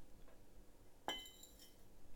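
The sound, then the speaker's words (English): A single sharp clink of small plates touching as they are set aside during a tea tasting, with bright, high ringing overtones that fade over about half a second against a quiet background. No one speaks. “So we put these small plates aside”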